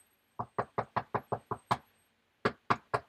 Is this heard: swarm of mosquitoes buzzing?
no